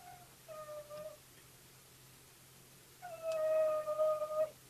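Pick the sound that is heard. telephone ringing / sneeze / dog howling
dog howling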